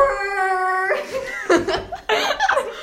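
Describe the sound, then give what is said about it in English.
A person imitates a screaming deer with a steady, piercing, tonal cry that holds for about a second, then breaks off into several bursts of laughter. “like, it's kind of like a deer, but deers scream.”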